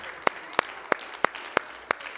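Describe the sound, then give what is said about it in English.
A church audience claps hands in praise of God in a steady unison rhythm, six crisp claps spaced evenly apart, over a soft murmuring background with no clear talking. “Come on and praise him with your hand clap of honor tonight.”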